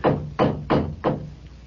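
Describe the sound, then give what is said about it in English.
Four heavy knocks from a hideous gargoyle door knocker at Number 13, Gehenna Street, evenly spaced about a third of a second apart, each a loud, booming strike with a short ringing decay, and no voices. “The door knocker. It's hideous. Gargoyle. Never mind that. Just knock.”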